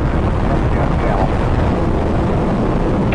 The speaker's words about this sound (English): T-minus 10, 9, 8, 7, 6, 4, 3, 2, 1. Liftoff of Space Shuttle Atlantis, the final visit to enhance the vision of Hubble into the deepest grandeur of our universe.